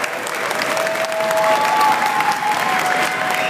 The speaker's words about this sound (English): And we want to give everybody here at the University of Cincinnati a huge round of applause for all of the hard work that you guys are doing.